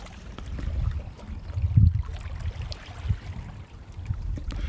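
Gentle sea waves lap against the shore in a steady, low wash, with a few slightly louder splashes rising and falling. No voices, just the continuous murmur of water.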